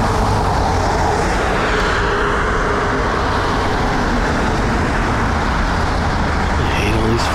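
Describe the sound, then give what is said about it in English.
Steady, loud roar of street traffic with cars rumbling past continuously, a dense low-frequency wash, with no gaps or talking. “Cars.”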